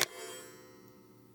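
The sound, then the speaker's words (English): A hall clock chime strikes once with a sharp metallic hit, then its bright tone rings on and slowly fades, fairly quiet and heard alone. “Damn clock, James mutters as it rings, staring at it.”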